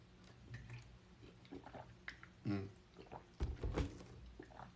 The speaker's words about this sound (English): So hopefully I can sleep through the night tonight, but I doubt it with this water, especially because I keep on drinking this water.